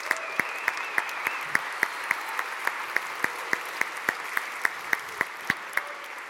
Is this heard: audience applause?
yes